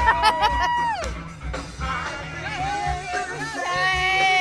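An outdoor crowd at a drive-in concert at the Ventura County Fairgrounds, part of Concerts in Your Car, watching from the backs of cars, fold-up chairs and pickup truck beds, cheers with rising whoops, sharp whistles and steady noise from the audience carrying on throughout.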